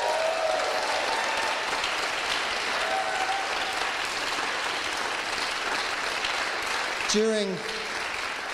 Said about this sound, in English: And by the way, can we have a cheer for the tech team? Let's just cheer the tech team.